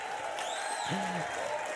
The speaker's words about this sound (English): And I think after three, all of these guys should take a big bow and we should give them a big, huge shout and a round of applause. One, two, three. Come on, guys, take a bow.